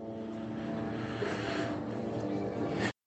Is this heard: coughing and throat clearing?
no